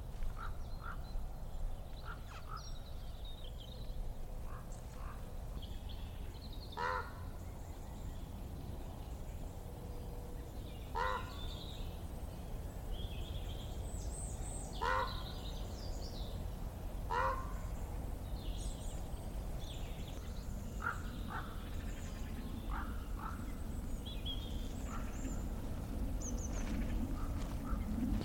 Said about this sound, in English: Bit of raven calling there, which was really, really lovely to hear.